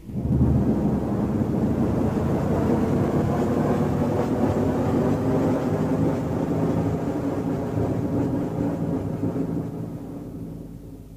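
A heavy, continuous roar of a spacecraft shuttle's main engine burn as the shuttle separates, with deep rumble and broad hiss, loud, holding steady for several seconds before tapering off near the end. No voices.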